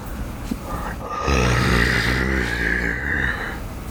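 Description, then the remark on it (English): A single low, rumbling animal growl starts abruptly after a second of quiet and holds steady for nearly three seconds, rough and guttural with no voices. “I was waiting for a second growl, but there wasn't.”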